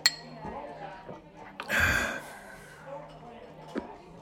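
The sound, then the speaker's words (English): A single bright clink of glasses touching in a toast between a bartender and a customer at a bar, over drinks of Crown with no ice, rings out at the very start, followed by quiet breathy sounds, a sip or sigh, and faint background murmur. “Never had someone pour the bartender a drink before. There's a first time for everything. Cheers. Cheers.”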